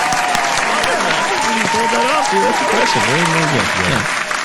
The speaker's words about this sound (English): Round of applause.